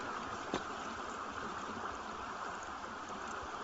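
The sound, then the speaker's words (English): A steady, continuous rush of flowing water from the South River, even and unbroken throughout, with one brief splash or knock early on. No voices are heard. “This water is on a journey, much like we are, from dusk to downpour.”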